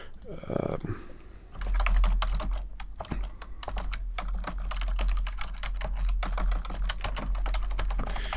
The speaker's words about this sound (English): are you hearing that distortion? That was me typing loudly.